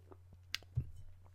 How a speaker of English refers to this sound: I'll have a sip of water.